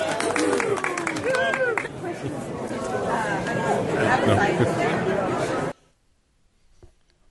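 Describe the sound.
An audience breaks into a round of applause, dense steady clapping mixed with cheers and excited crowd voices, lasting about six seconds before cutting off abruptly into near silence.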